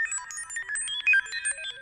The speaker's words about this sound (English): Nothing, sir. Absolutely nothing shows out there. And yet, there must be something. Those alarms are foolproof. Action stations.